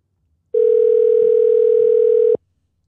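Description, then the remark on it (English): A single ring of an outgoing phone call to a parent, on speakerphone: one steady, buzzy mid-pitched tone that holds for about two seconds and then cuts off abruptly, with no one speaking. “She like sends us to voicemail.”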